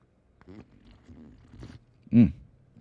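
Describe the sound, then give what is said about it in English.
A few soft, wet sips and mouth sounds, then one louder, drawn-out slurp of hot McDonald's coffee from a mug, followed by a quiet breath. “And custom dictates that I must slurp for you so you know that I actually have it.”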